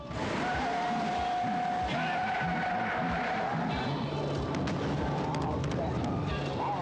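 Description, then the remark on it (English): A loud, continuous video game car engine roars with tires squealing and skidding as the driver tries to get a character off the car's roof, layered under dense game sound effects and occasional sharp impacts, while a voice murmurs in the mix. “I can't get him off the car,”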